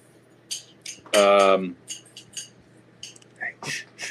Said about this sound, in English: Who's clanging silverware?